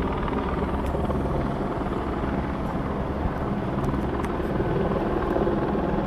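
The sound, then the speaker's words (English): Steady, loud rotor drone from several helicopters zipping around overhead fills the scene, a dense low-frequency thrum with some wind buffeting, sustained throughout with no talking. “Look at these helicopters are zipping around here.”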